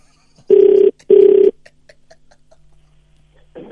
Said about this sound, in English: Can we call him back, please? All right, let's see what happens. It's ringing.